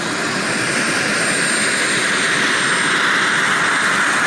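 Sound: helicopter flying overhead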